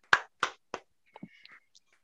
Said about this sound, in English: Yeah, you know what? Everyone who's listening, give a clap for Timo Werner. Yeah. He's ended the drought.